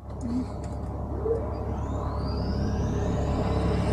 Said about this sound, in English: the first thing we're going to do is start the APU. So we test it.